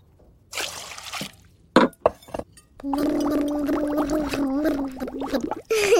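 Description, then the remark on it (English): Loud, wet slurping of soup by a child, with a few quick clinks and sucking bursts, then a long gurgling slurp that wavers in pitch for several seconds. “try to sip your soup.”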